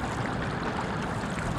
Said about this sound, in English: could hear the sound of running water in the distance. She walked along the path, getting closer to the sound of the water.